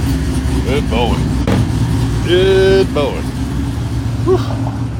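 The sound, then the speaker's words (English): A truck engine idles steadily with a low, rumbling drone throughout, while a person talks briefly over it with a raised, sing-song voice. “If he's not in the truck when it's running, he'll vibrate like your best friend beside your bed.”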